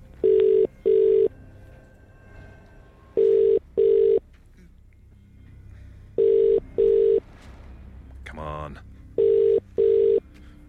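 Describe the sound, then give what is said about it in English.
A telephone ringing tone sounds over the line as a radio presenter calls a randomly selected listener in a cash giveaway, four evenly spaced double rings, loud and clear, with faint low background noise and a brief warbling blip between the last rings. “Remember, you need to answer the phone within five rings and know today's featured artist.”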